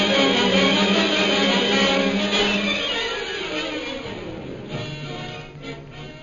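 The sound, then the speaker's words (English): An airplane circling overhead: a steady, full-bodied engine drone with layered harmonic hum that slowly fades in loudness, with no voices. “Several hours later, the sound of an airplane circling overhead brings Peter Hawkins and Shanghai Lil to the window of their cell.”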